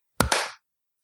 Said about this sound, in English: How hard can it be? One, two, three, and then an actual clap. Go. One, two, three.